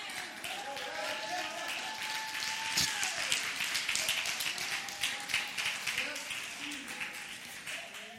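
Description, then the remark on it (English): A large crowd, standing, claps steadily and continuously for several seconds as a hand clap for the Lord, a dense, lively wash of hand claps with scattered voices and cheers mixed in, at a moderate level. “Everybody stand. The Lord a hand clap.”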